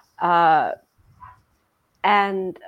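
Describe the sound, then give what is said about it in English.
One of the speakers' own dogs barks twice, each bark drawn out and loud, with a short quiet gap of about a second and a half between them. Nobody talks. “Is that your dog? Yep.”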